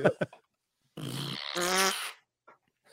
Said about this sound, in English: First fart that I got or that I had when I had that keyboard. Right into the microphone. Oh, I got a fart.